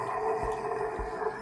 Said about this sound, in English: this creature bursts its way out of the chest. See it ripping and tearing the place apart and just lets out a big scream.